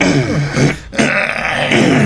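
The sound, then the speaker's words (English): A loud, drawn-out burp rumbles low and gravelly, breaks off for a brief moment, then continues in a second long, throaty stretch. “We got burps, we got itches.”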